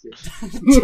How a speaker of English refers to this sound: Bless you.